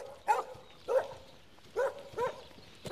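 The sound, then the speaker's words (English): A farm dog barks four times in short, spaced bursts, two close pairs, with a quiet outdoor farm background and no talking. “Lovely dog.”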